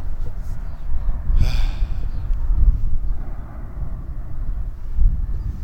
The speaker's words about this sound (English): Oh, there's the plane.